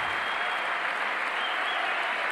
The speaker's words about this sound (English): Wow, that's quite the rousing applause.